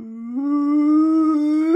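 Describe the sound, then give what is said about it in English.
A human voice mimics a dog's howl: one steady, fairly loud tone that climbs slightly in pitch in small steps over nearly two seconds, with no other sounds. “I'm not even kidding, dude, it was at least a minute long of his howl.”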